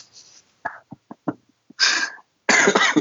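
A burst of close, harsh coughing: several short sharp coughs followed by two longer, raspy, breathy hacks, with brief pauses between them and no talking.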